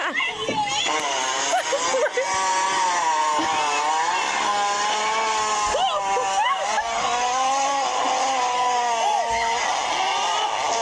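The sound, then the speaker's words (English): A loud, nonstop wailing cry with a buzzing, engine-like whine like a weed whacker, its pitch wavering up and down for about ten seconds, harsh. “It sounds like a power tool.”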